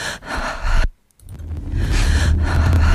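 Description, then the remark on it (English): Heavy, breathy exhalations from a Pride video called No Fear, Courage, Resist, shown in Times Square: one long loud breath, a brief silent pause, then another drawn-out, airy breath that swells and holds. No talking. “Here's a little clippy clop from it. She's back with the breathing.”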